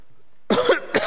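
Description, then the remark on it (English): A couple of harsh coughs in quick succession after a brief quiet moment, loud and raspy with no talking over them. “Sorry about this cough.”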